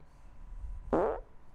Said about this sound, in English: Okay. Girls farting, guy farts while watching TV, or fart reverberating in bathroom. Oh, God. How can I choose? I'd like to hear the girl fart. Girl fart?